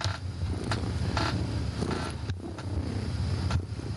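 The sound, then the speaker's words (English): Low, steady rumble of fire trucks passing outside near a hospital, with a few sharp mechanical clanks and bursts of road noise over the engine drone, moderately loud and with no one speaking. “And there's fire trucks and stuff going on. I hate living near a hospital, but whatever.”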